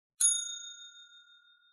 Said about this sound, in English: We're gonna talk about this movie and spoil it. So I'm gonna hit the bell again.